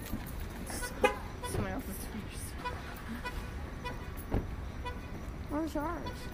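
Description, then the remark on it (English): A couple of short car horn chirps as a car is unlocked with a remote, a few seconds apart, its lights flashing, over steady parking-lot traffic rumble with faint voices. “I'm still unlocking my car.”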